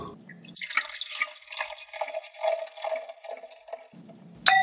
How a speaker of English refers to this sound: We're going to play a little bit of merry-go-round with the glasses and pour something else in there, and we'll come right back and talk wine.